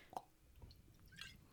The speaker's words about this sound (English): Does it sound like a fish? I think it probably just sounds like bubbles. I'm not sure.